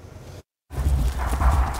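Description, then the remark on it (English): Horses, highly trained ponies at GM Stables, moving about in the stable, with a dense rumble of shuffling and scattered hoof sounds that resumes after a brief moment of silence. No one speaks. “It's been months since Atlee Chapman has seen these horses.”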